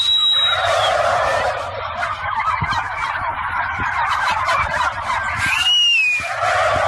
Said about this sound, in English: See, this sound clip alone represents why the turkey should be our national bird.